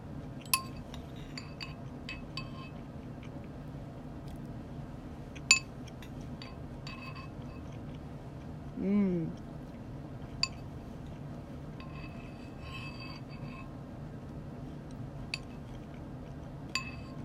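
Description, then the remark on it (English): A spoon clinks irregularly against a bowl of Honey Nut Cheerios while someone eats, with scattered light, bright taps over a low background hum and a brief low voiced sound midway. “Oh my god, I just swallowed that one whole.”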